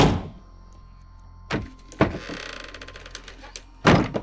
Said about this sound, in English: Freya shoved Runa into the broom closet beside the hearth. She whispered urgently for Runa to keep quiet. The door slammed shut.